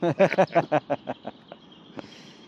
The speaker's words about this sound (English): I wonder if we see what that bird is that's in the alarm call there.